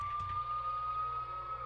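A police siren holds a steady, piercing tone over a low engine rumble, its volume staying fairly even throughout rather than clearly rising.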